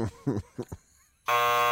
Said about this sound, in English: Sound good. Correct. That buzz was correct.